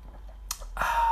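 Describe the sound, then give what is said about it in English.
A quick sip of Bradfield Belgian Blue beer from a pint glass from the 43rd Sheffield Steel City Beer and Cider Festival: a brief airy breath, then a longer soft slurping hiss of drinking, fairly quiet and with no talking. “I'm gonna take a quick sip of mine.”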